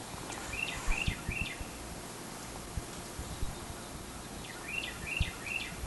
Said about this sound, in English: Sound of an unperplexed wren.